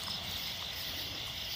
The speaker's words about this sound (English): Wow. There's some kind of cricket over here.